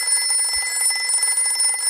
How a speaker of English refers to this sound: The phone rings. What can it mean? Action? Horror? Mystery? Danger? Intrigue? There's only one way to find out when our hero picks up the phone in Dial A for Adventure!